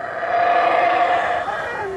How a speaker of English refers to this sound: they're calling to each other, roaring, howling across the canopy